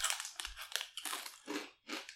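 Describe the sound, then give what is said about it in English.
Crisp, brittle crunching of rice snacks being chewed, a run of several dry crackly bites with short pauses between them, no voices. “You know what you're getting enraged about when you keep hearing us crunching.”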